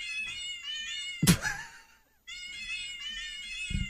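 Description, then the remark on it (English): A cat piano app plays a quick run of synthetic meow notes in a tune, broken by a loud thump and a brief pause, then more meows ending in a thud. “I just downloaded a cat piano so I could play … by …”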